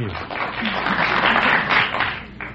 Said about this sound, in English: Some people out there from Fonjilac were applauding.